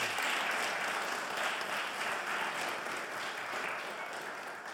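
An audience applauds steadily, a dense wash of many hands clapping at an even loudness for the whole stretch, tapering slightly at the end, with no voices on top.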